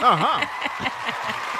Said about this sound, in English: What I did is I brought my studio audience with you. Yeah, I brought my studio audience with me. And so, studio audience, y'all give them a round of applause. Yeah.